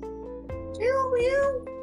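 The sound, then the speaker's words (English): A single drawn-out cat meow, clear, rising then wavering before trailing off, over a steady low background hum. “Who is that squirrel in the window? Cat.”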